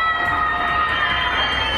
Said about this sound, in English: And screaming from their apartments.